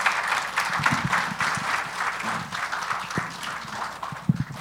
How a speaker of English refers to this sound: Could we give them a round of applause?